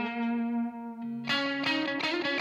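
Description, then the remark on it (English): A distorted electric guitar lead plays sustained notes, then a quicker phrase with eighth-note tape-delay echoes trailing each note and a short plate reverb of about a second or less, played alone and fairly loud. “So this is a tape delay set at an eighth note, and a little plate reverb, pretty short it looks like, about a second or less.”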